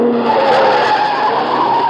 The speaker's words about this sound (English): Car coming down from the house. Yeah, at a good clip, too. Well, looks like Henri's car, a little souped-up job.